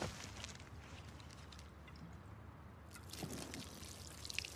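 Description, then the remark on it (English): Beer pours out in a steady stream with a faint splashing trickle, continuous for a few seconds, with no one talking. “Can you pour it out for me?”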